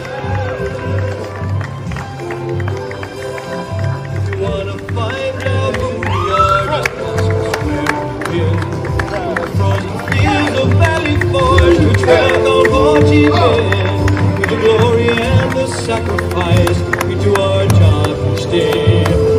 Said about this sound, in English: Big round of applause for our Aurora Fire Department Honor Guard.